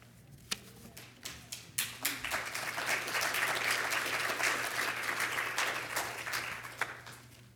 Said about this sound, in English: Well, so you want me every week to talk about controversial issues, is that it? Yeah, you applaud me, you're just going to egg me on, you know.